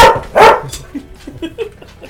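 A dog barks into a loudspeaker: two loud barks in quick succession, followed by a trail of softer yips and short whimpering sounds that fade out.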